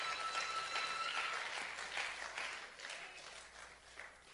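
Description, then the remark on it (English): A church audience claps their hands for the Lord Jesus in sustained, dense applause, a steady crackling wash of many overlapping claps with no voices standing out. “Clap your hands together for the Lord Jesus.”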